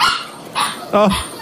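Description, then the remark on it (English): A dog left alone in a room for the night barks in a quick series of three short, sharp yelps, the last one higher and more drawn-out, almost whining. “I want to go rescue that dog now.”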